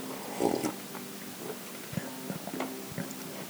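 sipping coffee

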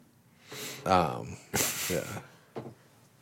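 sneeze

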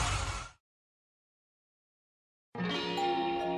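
doorbell ding-dong chime

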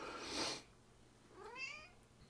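cat meowing

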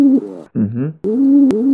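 pigeon cooing

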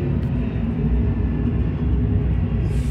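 airplane flying overhead

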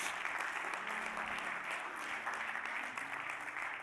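audience clapping

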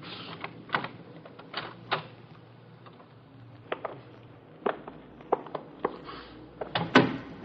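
door being opened

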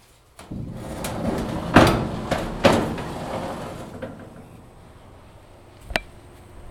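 doors opening

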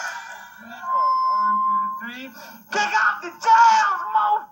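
censorship bleep tone

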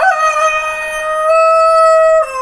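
rooster crowing

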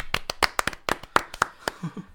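applause

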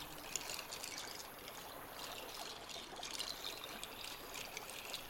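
flowing stream water

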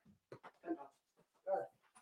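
dog whimpering

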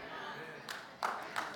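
one person clapping

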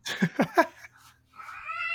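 cats caterwauling

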